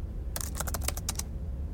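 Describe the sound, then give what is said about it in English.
A quick burst of keystrokes as someone types notes on a computer keyboard, about ten clicky taps in an uneven rhythm over a low background hum, then stopping. “What are you typing?”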